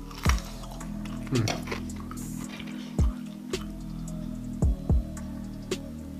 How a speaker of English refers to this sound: this bacon is super crunchy. So good.